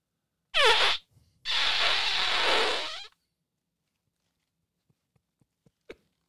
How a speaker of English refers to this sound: I'm 47 farting into a $100 microphone into a $600 board.